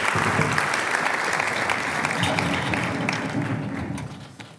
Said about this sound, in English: We were supposed to clap when she walked up, so can we give her a clap?